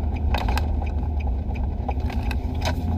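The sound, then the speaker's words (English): A car engine hums steadily at low pitch from inside the vehicle, with light intermittent rattles and clicks over the constant rumble as the car makes a U-turn. No one speaks. “I don't know if there's a car following me or not, but I'm going to do a U-turn right here.”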